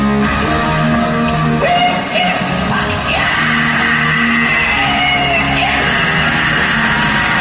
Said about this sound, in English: Sounds like me last night at karaoke. It's not a smooth scream. It's a very jagged scream. Yeah, it's a little raw.